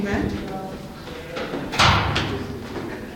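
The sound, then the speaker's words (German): Footsteps thud up a staircase in a few irregular steps, with one louder knock midway, while a murmur of indistinct voices carries through the background. People are walking up the stairs to the second floor. “Jetzt gehen wir hier die Stege zu dir auf. Und wir hören schon die ersten Stimmen.”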